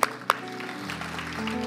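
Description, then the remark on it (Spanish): A church audience at Misión Ebenecer applauds for the Lord during a morning service, a dense, steady patter of many hands after a couple of sharp opening claps, with a low sustained musical tone running underneath. “Un aplauso para el Señor esta mañana, Misión Ebenecer.”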